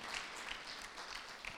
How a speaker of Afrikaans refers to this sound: Dankie vir elkeen wat die Here lief het. Kom, klap vir die Here. Kom, ek gee die Here eer.